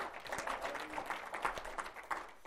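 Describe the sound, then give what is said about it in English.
A crowd applauding a woman, a dense, steady patter of many hands clapping at once that fills the whole moment at moderate volume, with no one speaking over it. “Give her a clap, please.”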